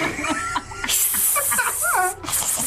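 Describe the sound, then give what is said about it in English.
A woman imitates a snake with a long, sharp hiss lasting over a second, while other voices talk and chuckle underneath. “She can be a snake, but I can't be a spider.”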